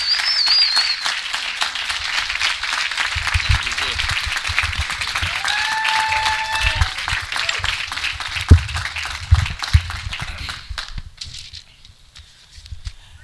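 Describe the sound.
An audience breaks into loud, sustained applause, dense clapping filling the room for about eleven seconds, with a few voices and cheers mixed in, before it tapers off and fades.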